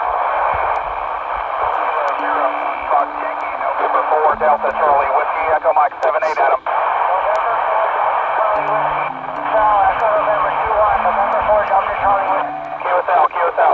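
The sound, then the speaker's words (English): A crowded amateur radio band roars with layered, overlapping voices and hiss, probably around 100 callers trying to talk at the same time in a pileup, with steady tones and squeals drifting through the dense, continuous noise. “So the reason it's so noisy often is because you got probably 100 people trying to talk at the same time.”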